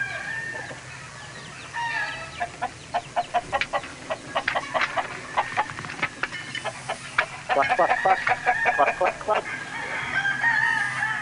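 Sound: rooster clucking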